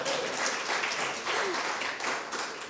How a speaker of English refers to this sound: A big round of applause.